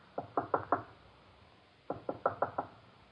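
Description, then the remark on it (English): Two bursts of knocking on a door, four sharp raps then a pause and five more, clear with no voices, the hollow wooden thuds evenly spaced. “Who is it? Fong. Who? Fong. Open the door.”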